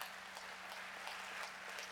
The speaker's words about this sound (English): So can we give a big hand clap and thank you to all those that did that this week.